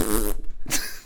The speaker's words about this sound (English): I just farted.